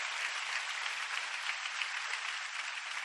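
A crowd claps for the Lord steadily for the full stretch, a dense, even wash of many hands applauding together, with no voices over it.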